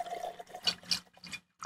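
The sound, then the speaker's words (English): Whiskey poured into an Uncle Nearest glass: a few short, gurgling splashes in uneven bursts, fairly quiet, with a brief pause before a final glug. No one speaks. “Yes, ladies and gentlemen, he is actually pouring that beautiful brown nectar.”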